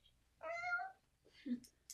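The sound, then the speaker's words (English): A cat lets out a drawn-out, wavering meow, then a shorter chirp-like mew follows with a few faint high clicks, fairly loud with no talking; the cat's sounds were used for the ghast in the game Minecraft. “His cat made the sound of the ghast.”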